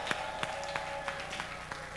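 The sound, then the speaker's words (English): An audience claps in praise of Jesus in a steady, even rhythm, six sharp beats about a third of a second apart, over a constant droning tone. No clear shouting stands out. “Receive the power and give Jesus a clap and a shout of praise.”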